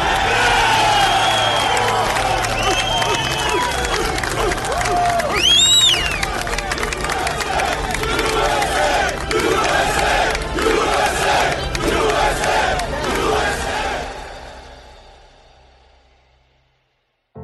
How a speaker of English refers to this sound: Those rescue workers erupted. It was a cry, a roar of a crowd who wanted justice to be done, who were searching with their bare hands for anybody who come out alive.